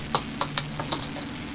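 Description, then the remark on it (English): A bottle of Space, a bloody orange craft cider, being opened, heard as a quick series of five or six light, sharp glassy clinks and taps with no one talking. “So I'm gonna bust this open.”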